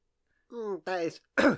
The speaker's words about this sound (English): Also, ignore that cough, I just had something caught in my throat.